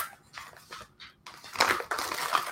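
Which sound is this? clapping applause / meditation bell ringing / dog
dog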